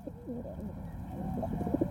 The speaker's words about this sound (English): Pigeons are everywhere in our cities. But how did they get there? Short answer, we invited them.